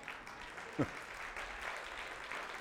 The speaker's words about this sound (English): You should clap right there.